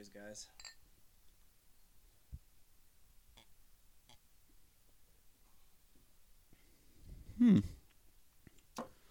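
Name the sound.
glasses clinking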